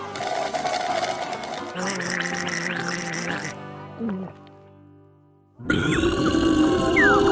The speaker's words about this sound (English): Wow, that was the most beautiful burp in the whole wide world.